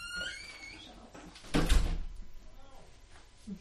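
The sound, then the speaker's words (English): A door squeaks briefly and then shuts with a single solid thud, trapping someone in a garage. Quieter background noise follows, with nobody speaking. “No, it was an oh no, because the door closed.”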